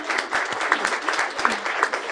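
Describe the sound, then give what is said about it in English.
Steady applause from an audience for a couple married 35 years, a dense wash of many hands clapping at a fairly even loudness throughout, with no voices standing out above it. “We can clap for that.”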